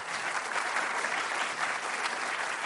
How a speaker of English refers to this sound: Round of applause for Dr. Gretchen.